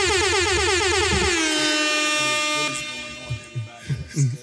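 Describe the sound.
A loud, blaring air horn sounds for nearly three seconds, first in rapid warbling pulses and then as a steady held blast, before dropping away under scattered voices.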